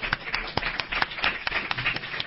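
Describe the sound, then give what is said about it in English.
An audience at a live event at Brandman University breaks into applause, a steady patter of many hands clapping with sharper individual claps standing out at an irregular rhythm, sustained throughout at moderate loudness. “Wow, that deserves a round of applause, ladies and gentlemen.”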